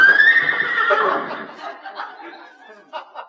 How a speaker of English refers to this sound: Oh, that's that Great Dane that belongs to the people next door. Great Dane? Sounded like a horse to me.